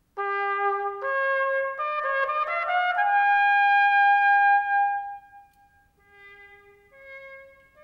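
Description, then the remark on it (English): An echo cornet, a type produced in the mid-19th century, plays with its fourth valve pressed so it sounds through its constricted echo bell, giving a thin, muted tone: a steady phrase of several sustained notes, then a quieter, shorter phrase after a brief dip. No one speaks. “There's a fourth valve here, and when that's pressed, the whole instrument sounds with this constricted bell rather than the normal bell.”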